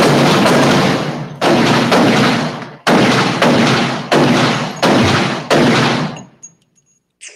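A gunshots sound effect: seven loud, booming gunshots fire in an uneven sequence, each blast trailing off in a rumbling echo before the next, ending with a faint high ringing and then silence.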